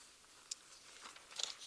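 Faint, crisp paper rustling as someone searches for their paper notes, with a few short crinkly bursts, a sharp one early and a cluster near the end, with no voices.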